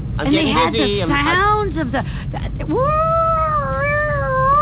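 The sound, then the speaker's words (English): A voice imitates an ambulance siren with their head out the window, wanting someone to go faster: wailing in loud, wavering glides that swoop up and down, then rising into a long sustained tone, over a low rumbling background. “I got my head out the window and I'm making ambulance sound because you want me to go faster.”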